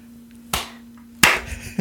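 Two sharp hand claps, spaced under a second apart, with the second landing harder and ringing out a bit longer, over a low steady hum and no talking.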